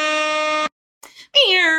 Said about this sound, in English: can I get a air horn from all your mouths at home and the air horn sound for Connor Lowe in the booth